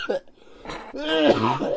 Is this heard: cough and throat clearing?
yes